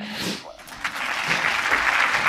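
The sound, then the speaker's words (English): A crowd bursts into steady, dense applause that swells and holds at a fairly loud level for a couple of seconds, with a brief voice or cheer at the very start. “Please clap.”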